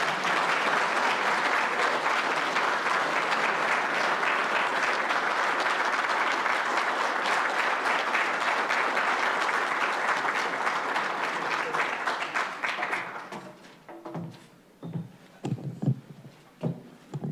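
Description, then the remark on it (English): Sustained, dense applause from a sizable audience at a think tank in the United States for about thirteen seconds, welcoming the Foreign Minister of the People's Republic of China, Wang Qi; it then fades out, giving way to a man's voice beginning to speak. “So would you please, with your very warm applause, welcome the Foreign Minister of the Republic of China, People's Republic of China, Wang Qi, please.”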